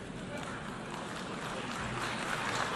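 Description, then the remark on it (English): A faint, thin patter of applause from a small number of people, steady and low in level across the whole stretch, with a soft murmur of crowd noise mixed in. “And you heard like a little, just a tiny, small amount of applause.”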